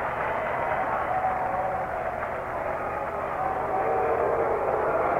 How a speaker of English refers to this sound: There's a fastball, swung on and missed. He struck him out. And this crowd roaring with every pitch, with every out.